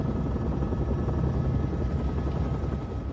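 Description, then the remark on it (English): A helicopter flying toward a nuclear power plant, its steady, loud rotor drone filling the whole stretch, a dense low-frequency rumble with rapid choppy pulsing and no pauses. “Tell me how a nuclear reactor works, or I'll have one of these soldiers throw you out of the helicopter.”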